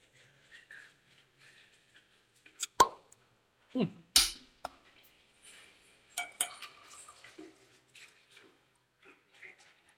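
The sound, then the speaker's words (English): Glass handling: a few sharp clinks and a soft plop, followed by a light splashing trickle of Texas whiskey being poured into a glass, with quiet bumps throughout. The whiskey's mash bill is 70% white corn, 25% rye and 5% malted barley, aged at least 2 years. “Let's go ahead and glass up some.”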